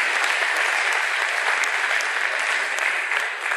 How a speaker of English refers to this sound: All right. So give these folks one more round of applause, please.